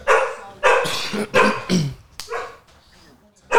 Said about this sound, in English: Hey, if y'all hear dogs in the background, bro, that shit don't matter.